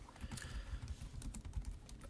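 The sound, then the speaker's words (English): Rapid, irregular clicking of keys on a computer keyboard, fairly quiet, with a steady patter of taps and no voices. “Typing. I am typing.”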